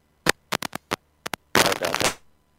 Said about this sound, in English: Got a little bit of static. Can you hear me okay?